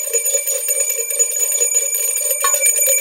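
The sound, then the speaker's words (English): A bell rings twice, its bright metallic tone sustaining and shimmering throughout, with the second strike coming near the end. It sounds fairly loud, and no one speaks. “It's a Two Bell Tuesday.”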